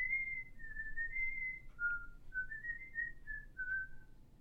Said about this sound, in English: He seems to be looking for something. A book, perhaps. Then he begins to whistle. Casually.